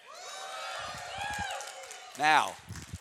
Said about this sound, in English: Now that I've proven you are awake and can yell, when you hear the word of God, awake up and yell with me.